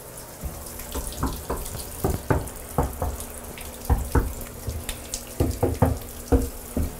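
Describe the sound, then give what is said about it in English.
A faucet runs water into a bathtub during a home inspection, adding a few inches to check for leaks; a steady rush broken by frequent splashy gurgles and plops as the stream hits the pooling water. No one speaks. “We'll typically add, if we have a drain stopper, 2-3 inches of water in there just to check we don't have a leak.”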